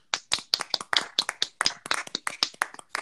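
A short round of applause: a few people clap in quick, uneven bursts of sharp, crisp slaps that overlap and keep a steady busy pace for about three seconds, with no talking.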